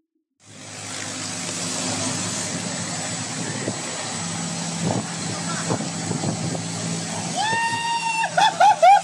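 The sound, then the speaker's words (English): A motorcycle engine drones steadily amid rushing wind noise as the motorcycle pulls a person riding a bicycle, with a few knocks along the way and sharp rising whines near the end as it revs. “I'll get on my bike. You pull me on a motorcycle.”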